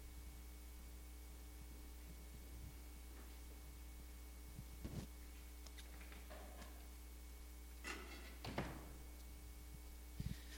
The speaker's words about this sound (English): I'll shut this door.